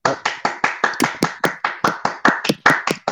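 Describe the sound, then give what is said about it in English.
A steady run of sharp hand claps, about a dozen in quick even rhythm, fairly loud and crisp, with no voices over them. “You should do a round of applause for that right there.”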